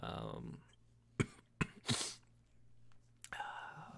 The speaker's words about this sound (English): And she takes a napkin and kind of coughs into it.